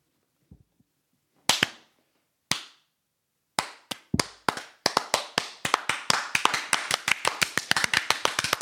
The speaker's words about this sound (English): 80s slow clap for the display of awesome psychic powers.